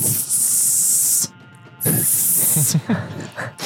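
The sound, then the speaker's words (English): A voice imitates an insect's hiss with two long, loud, breathy hissing bursts separated by a short pause, the second trailing into rough throaty sputters. “just over there making like those weird like insect hissing noises.”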